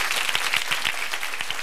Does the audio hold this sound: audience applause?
yes